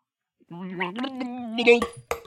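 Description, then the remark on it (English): A voice gargles water while singing a short sustained sea shanty tune as if underwater, the pitch rising once into a bubbling, warbly tone before ending with a couple of sputtering splashes as water spills. “I need you guys to sing a sea shanty song as if you're underwater.”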